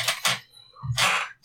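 Dice are rolled, hoping for a 20, and land on a 3; they rattle and clatter across a hard surface in a few short, bright bursts separated by brief pauses, with a dull knock underneath each tumble.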